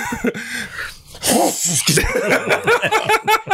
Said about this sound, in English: I have to sneeze.